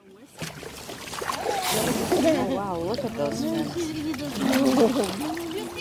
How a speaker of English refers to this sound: Every year, 13 million people go out onto the water to watch whales and dolphins. Just watch them. Those are a few of those people. That's a boat full of whale watchers in Baja.